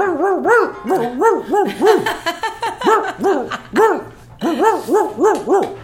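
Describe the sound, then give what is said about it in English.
A pit bull named Monkey barks and yowls in a rapid, continuous string of short, loud, pitched calls with a rising-and-falling, almost talking quality, with no human voices. “Okay, Monkey said, translation from Pitbull, that is, it's very important for you to go down and support Vice is Nice because it's helping the animal shelters.”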